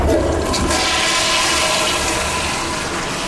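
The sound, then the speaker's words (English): A toilet flushes loudly, a steady rushing swirl of water that stays strong for the full few seconds with no one speaking; the toilet is in a sustainable building where its water goes out to an anaerobic digester. “that water from the toilet goes out to an anaerobic digester and then comes back in through what looks like a tropical greenhouse, but it's actually got a name called a living machine.”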